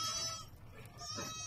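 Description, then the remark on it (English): A goat, one of about 100 grazing goats kept in San Francisco, bleats twice in a wavering, nasal cry, fairly loud over a low background rumble, with a short gap between the calls. “About 100 goats live here, and no, that is not nearly enough to digest all the yard waste in San Francisco.”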